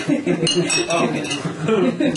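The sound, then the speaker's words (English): Cups clink together several times in a toast at a Moon Festival meal, bright little knocks, with murmuring voices and table clatter in the background. “Everybody have one cup. Cheers. Cheers.”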